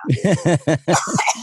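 A fairly loud series of short, voiced coughs comes in a quick rhythmic run, then trails into rougher throat clearing. No speech is heard.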